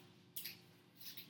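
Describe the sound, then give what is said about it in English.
A faint, steady electrical hum fills a near-silent signal, broken by two brief scratchy crackles of noise as a microphone cable comes unplugged. “Oh no, the mic just came unplugged.”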